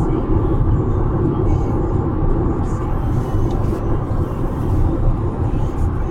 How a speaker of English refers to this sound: Ooh, motorcycle's lit coming in.